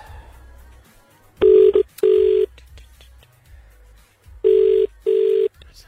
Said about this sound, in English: Right, yeah, here we go. Let's ring our 1987 Nokia phone and see who we get.